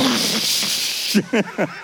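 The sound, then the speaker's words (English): A church crowd imitates a toilet flushing as a prophetic act, hands reached out as if on a flusher, with a loud, sustained breathy whoosh lasting about a second, fading into a few short, higher-pitched vocal bursts. “Okay, let's take the problem that's so big, and everybody reach out your hand, put your hand on the little flusher on the toilet, and make a flushing sound.”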